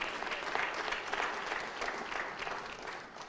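An audience claps in a steady, dense burst of applause that holds at an even level for a few seconds, without any clear voices.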